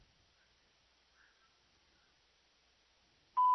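A quiet, faintly hissing phone line of a caller to the radio show Christian Questions, then a single short, loud electronic beep at the very end, sharp and steady in pitch. No one speaks.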